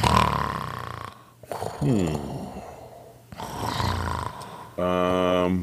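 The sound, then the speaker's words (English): A voice imitates deep, slow, languid snoring: several long, rumbling inhales and exhales, fairly loud, with a rough, buzzy final snort. “And so you just take it in stride, glance askew, as what you're positive, what you hear from beyond that door, is a deep and languid snoring.”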